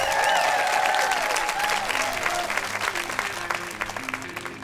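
Loud, sustained audience applause for the Boise Gay Men's Chorus at Story Story Night, a dense wash of clapping with some cheering voices at first, continuing steadily and thinning slightly toward the end.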